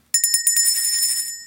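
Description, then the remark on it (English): A small bell, the show's 'Rob Bell' sent by benefactor Nathan Martin, rings rapidly for about a second, its bright, high metallic tone shimmering with quick repeated strikes, then one more strike starts just as it ends. “And we are to ring the Rob Bell anytime someone on the show says something that sounds liberal or flaky.”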